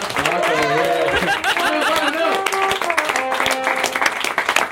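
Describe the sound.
An audience breaks into a steady, loud round of applause lasting several seconds, dense clapping mixed with shouting and cheering voices throughout.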